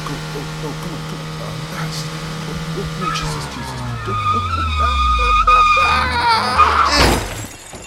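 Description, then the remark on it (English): Tires screech in a long, loud skid as a car swerves to avoid a woman standing in the road, the engine pitch dropping, ending in a sudden crash with breaking glass as it goes off a bridge; faint cries rise behind it. “I quickly swerved to avoid hitting her, and I went off the bridge.”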